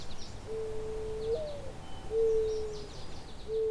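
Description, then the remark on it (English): A mourning dove gives its soft, mournful cooing: a slurred rising first note followed by long, steady hoots, with faint chirps from other birds in the background. “The mourning dove is a common and also very quiet bird.”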